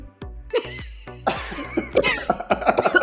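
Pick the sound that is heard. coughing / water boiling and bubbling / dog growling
coughing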